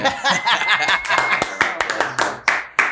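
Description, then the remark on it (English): An audience breaks into applause welcoming a guest, a dense patter of many hands clapping that gradually thins out into a few scattered, sharper individual claps by the end. “Round of applause for Arthur.”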